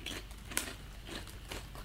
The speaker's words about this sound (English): All right, I'm going to mute myself while I'm eating the crisp. No! The best part is hearing your crunch, crunch, crunch. Oh, we'll go. Some ASMR content for you. Going to eat another one just to make sure.